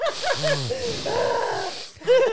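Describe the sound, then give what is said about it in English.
A voice imitates heavy, raspy breathing: a few loud hissing breaths mixed with wavering, groan-like voiced tones over about two seconds, with a sharper breathy burst at the end. “Just breathing heavy.”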